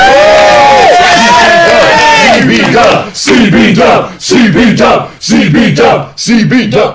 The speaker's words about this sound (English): The audience are once again cheering and clapping for good quality British wrestling.